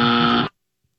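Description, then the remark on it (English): A single harsh, loud game-show buzzer blares for about half a second with a dense, raspy harmonic tone, then cuts off abruptly into silence. “No, buzz for you. Buzz.”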